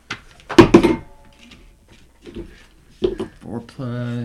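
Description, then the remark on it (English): Dice, including an eight-sided D8 rolled for spear damage, clatter and tumble across a table in a couple of short, rattling bursts, followed by a brief voiced sound at the end. “So I'm borrowing these dice over here.”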